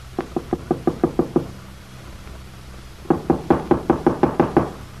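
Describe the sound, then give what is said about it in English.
Two bursts of sharp, rapid knocking on the wooden door of a room in a shabby hotel in Gary: about eight quick raps, a pause of nearly two seconds, then a louder, more insistent run of about ten. No voices. “Bill Meade, tense with excitement, stood before Mario Descari's door in a shabby Gary hotel.”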